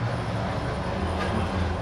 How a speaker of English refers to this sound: Truck passing by real fast. Kills the vibe, right?